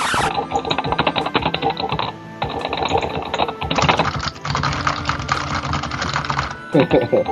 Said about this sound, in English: There's some furious typing going on.